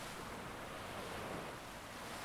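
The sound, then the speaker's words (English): Waves lapping gently onto the beach at Catalan Bay, on the Mediterranean east side of Gibraltar, in a steady, continuous hiss of surf, with a soft breath of wind and no voices. “Crochet, wine, gambas pil-pil, and waves lapping on the beach next door.”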